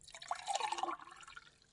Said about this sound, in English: I'm really thirsty, Gran. Don't worry. I'll pour you a drink.